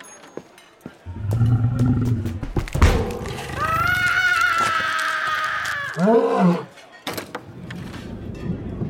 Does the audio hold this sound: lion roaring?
yes